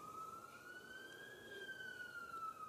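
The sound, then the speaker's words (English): An emergency vehicle siren wails outside in Auckland, one long sustained tone that slowly rises and then falls, over steady background noise with no one speaking. “Do you care about that? What, the siren?”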